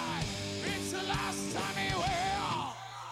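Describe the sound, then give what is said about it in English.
A recorded music passage with a loud, wailing vocal over sustained instrumental tones. Echo delay repeats the sliding vocal phrases before the sound drops off near the end. “See what happens here with the echo.”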